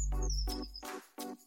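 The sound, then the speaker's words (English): Faint birdsong: a thin, high, sustained whistle that drifts slightly downward, with a few brief chirping notes repeating in an even rhythm over a low background hum. “But I think the bird song in the background adds to our conversation.”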